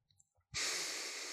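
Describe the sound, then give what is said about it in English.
After a moment of near-silence, one loud breath through the nose begins: a steady, airy rush that holds strong until the end, with no talking; a person demonstrating nasal breathing, breathing louder than normal on purpose. “Taking some nice nasal breaths the whole time. I'm breathing a little louder than I normally would be because I'm trying to demonstrate a breath on an audio program.”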